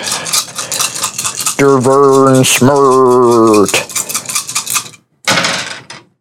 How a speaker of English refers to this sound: That's not one of the dice that I should be rolling there.